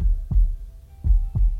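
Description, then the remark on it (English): A steady, deep heartbeat thumps, with three low, muffled beats spaced evenly over a faint background hum. No one speaks. “Now, place your hands over your heart and feel your heartbeat.”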